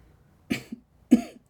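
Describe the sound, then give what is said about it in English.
Two harsh coughs about half a second apart, each a sharp burst with a short rasping tail, with no talking around them. “Tamiya coughed, wiping blood from her nose as she pulled Blotch to her feet.”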